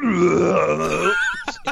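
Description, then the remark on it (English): A voice mimics a dolphin burping: one long, low, croaking belch that wavers in pitch, then two short, sharp puffs of sound at the end. It's fairly loud, with no other talking. “And the dolphins would just keep jumping out burping.”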